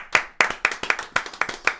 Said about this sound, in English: Everybody's clapping